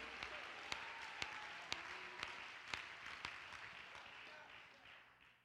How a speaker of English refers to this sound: If you believe it, would you clap your hands?